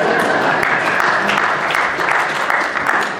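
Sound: audience applause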